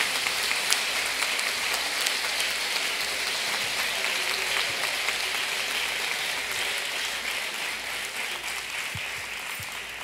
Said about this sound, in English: Our ministry leaders, yeah, right down front. Y'all can clap for them too, by the way, while they're coming.